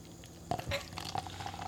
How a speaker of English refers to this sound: Oh, that's a good pour. It's like a nice noise. Dude, that was a good, yeah. Like, do it next to the mic. Classic pour noise.